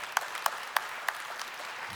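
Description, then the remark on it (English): A few sparse, evenly spaced hand claps after a baptism at a church service, about four sharp slaps in a steady rhythm, then a fainter one as the clapping quickly dies out. No voices are heard. “It's worth more than three little claps when somebody comes to faith in Jesus, right?”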